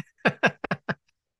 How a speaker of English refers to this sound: Are you sniffling over there? I am. Sorry, I'm a little under the weather.